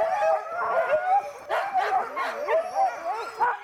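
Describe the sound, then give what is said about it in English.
A crowd of sled dogs at a kennel barking, yipping and howling all at once, their overlapping cries forming a constant, excited chorus. “They harness the dogs and hook them up and drive a team.”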